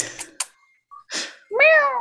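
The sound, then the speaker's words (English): A big cat lets out a clear, drawn-out meow, preceded by a few short breathy, scuffing noises and a brief faint squeak, with no talking. “I have a kitty.”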